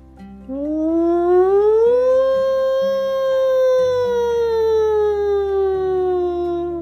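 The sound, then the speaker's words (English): An evacuation alarm at the Spy Kids headquarters: a single loud, sustained siren wail climbs in pitch over about two seconds, then slowly sinks as it holds, with a low steady drone beneath and no voices. “As the alarm sounded, the entire Spy Kids headquarters ran outside.”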